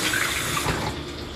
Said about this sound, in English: All right, you hear that oil kind of sizzling up from the pan.